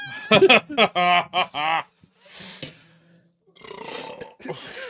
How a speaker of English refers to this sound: So number four is Carolina Reaper. Ugh. Suck it. Hold on. Time out. I got to belch. I'm going to throw up.